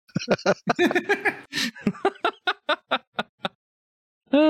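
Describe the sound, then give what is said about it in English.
A person voices a seagull character named Daniel with a loud run of squawking, yelping calls, a tight burst at first that spaces into separate cries, then one last squawk after a short pause. “Also, you get to voice him, by the way.”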